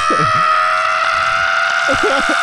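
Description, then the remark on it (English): A loud, raspy, phlegmy scream holds steady for a couple of seconds, harsh, with low guttural vocal bursts rumbling underneath at the start and end, as part of a vocal performance. “I felt the phlegm to scream like that, and I was like, I have to do it.”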